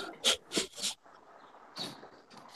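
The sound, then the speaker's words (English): A bird chirps in harsh, raspy bursts: three quick calls in a row, a short pause, then two more calls. No one speaks. “This is a, yeah, shut that bird up or I'm going to shoot it and cook it.”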